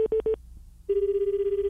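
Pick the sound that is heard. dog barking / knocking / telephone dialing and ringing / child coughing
telephone dialing and ringing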